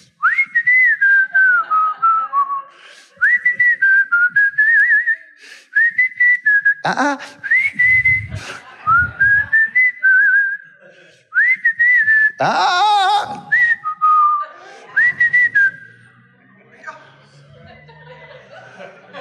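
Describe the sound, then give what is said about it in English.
Someone whistles a cheerful, melodic Disney song in short phrases, clear, with bursts of chuckling and laughter breaking in partway through before the whistling resumes. “Now, if you're just listening to audio, I was whistling some cute song from Disney that needs to be delivered.”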